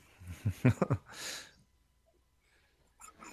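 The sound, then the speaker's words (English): A single sneeze: a few quick voiced catches building up, then a sharp, hissing burst of breath, followed by quiet and a faint rustle at the end. “Bless you.”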